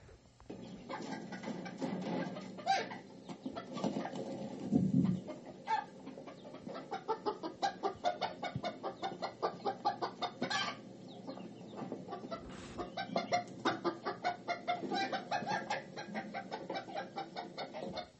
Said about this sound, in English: Chickens, you need to freaking settle down